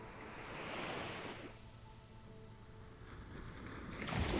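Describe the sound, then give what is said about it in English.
Soft waves wash in and draw back over flat sand, a broad hiss of surf swelling and fading at an unhurried pace, with a light breeze brushing the microphone and no voices. “Gentle aquamarine waves glide slowly over the flat sands.”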